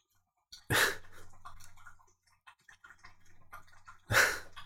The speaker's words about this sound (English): That's Skid drinking water. You know, the dog, every episode he does this. I should stop feeding him dry food.